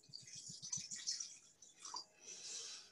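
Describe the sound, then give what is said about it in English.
Slightly fizzy white wine pours from a bottle into a glass, starting with a quick run of rhythmic glugs, then a steady, hissy splash of liquid filling the glass, fairly quiet, with no talking. “I should pour it into my glass now.”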